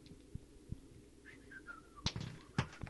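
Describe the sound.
A person whistles a short, faint tune of a few descending notes, followed by a couple of sharp knocks or thumps against low background noise.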